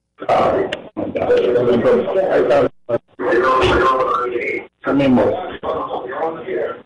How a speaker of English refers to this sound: I still hear the radio echo in the background,